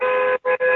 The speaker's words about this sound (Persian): این کیه داره بوق میزنه؟ ببخشید منطقه بدی هستم.